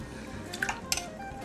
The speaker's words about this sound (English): So we'll take that over to my pan, my teppel, which is a pot. I pour in my 2 cups of water first, and then my fillet of haddock.